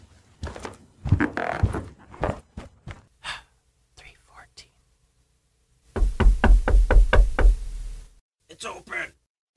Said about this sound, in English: Finally, he finds room 314 at the end of the hall and knocks on the door.